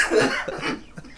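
A harsh cough from someone sick in the cold Christmas season, with a couple of rough bursts trailing into a softer one, over a quiet background with no talking.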